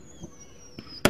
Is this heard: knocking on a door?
no